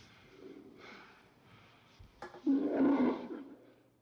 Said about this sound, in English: It's circling us. Sounds like a tiger. Fuck. Or a lion.